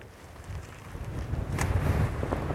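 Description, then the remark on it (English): Gusty wind buffets the microphone with a low, rumbling roar that swells and intensifies over a couple of seconds, with no voices present. “Windy.”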